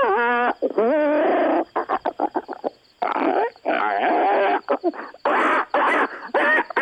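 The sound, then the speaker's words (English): A voice does loud monkey-like hoots and chattering calls in rapid bursts, with wavering pitch and short choppy yelps, imitating a monkey for several seconds. “She's a monkey girl.”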